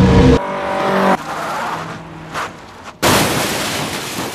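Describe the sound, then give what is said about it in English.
A car swerves hard to the right with a loud tire squeal, followed by a rough rush of road and engine noise, then a sudden louder burst of noise near the end. No one speaks. “I scream and wrench the wheel hard to the right!”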